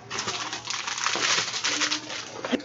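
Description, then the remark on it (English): An Amazon padded mailing envelope is being opened, with steady crinkling and rustling of paper and plastic that runs without pause for a few seconds and ends in a sharper crackle. “It's in an Amazon envelope.”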